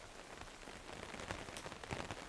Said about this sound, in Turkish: Yağmur damlaları oturduğumuz kafenin tentesine vurmaya devam etti.